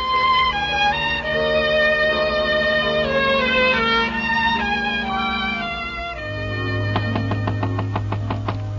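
Musical tones play for several seconds, then a rapid, steady series of about ten sharp knocks on a door rings out over a low held note near the end.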